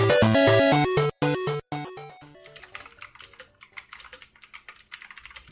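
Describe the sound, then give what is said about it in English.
A short burst of tonal music gives way to fast, clattering keystrokes on a computer keyboard, loud, tapping in an uneven rapid rhythm for a few seconds with no talking. “Loudest keyboard ever.”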